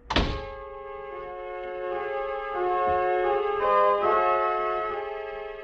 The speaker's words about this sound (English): I pushed another button, anyone at random. The door was released and I was in.